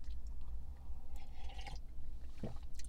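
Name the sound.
sipping coffee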